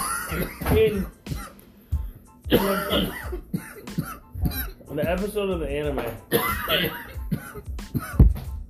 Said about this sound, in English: Jesus Christ, are you okay? No, I'm coughing my soul out.